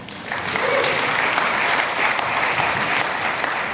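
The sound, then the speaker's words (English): An audience applauds the band: steady, dense clapping that swells in after a brief pause and holds at a loud, even level, with a faint murmur of voices beneath. “Let's hear it for the band.”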